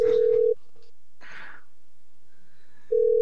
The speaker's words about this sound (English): How many rings does it take to get to this guy's voicemail?